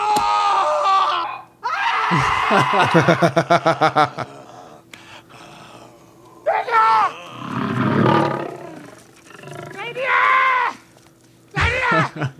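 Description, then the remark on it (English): A lion's deep roar rises in the middle, surrounded by frantic screams and shouts of tribesmen running from it, coming in loud bursts before and after the roar. “Yeah, the tribesmen running from a lion seems apropos.”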